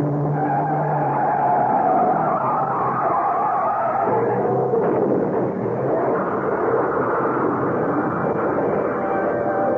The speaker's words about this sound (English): I saw the look on the face of the driver of a trailer truck he cut off and opened my mouth to warn him, but I was just a second too late as the truck came zooming up on our right.